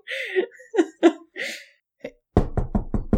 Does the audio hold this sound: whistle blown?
no